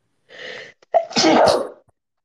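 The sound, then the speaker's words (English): A single loud sneeze: a breathy inhale building up, then a sharp explosive burst that trails off, with no talking. “I'm going to sneeze.”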